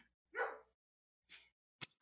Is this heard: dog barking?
yes